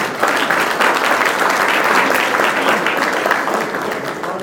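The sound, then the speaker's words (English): An audience applauds a speaker, clapping steadily for several seconds, a dense, even patter of many hands that stays loud throughout before easing off slightly at the end. “He's a great speaker, by the way, so everybody give him an applause.”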